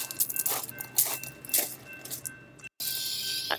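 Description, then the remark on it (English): Metallic rattling and clinking from a hi-rail truck rolling along the BNSF main line railroad tracks through Edmonds, Washington, about 20 feet away, with a steady thin squeal running underneath and irregular clanks repeating every half second or so. “false alarm, it's a high rail truck.”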